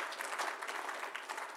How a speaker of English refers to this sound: Isn't that insane? And yeah, you can clap for that.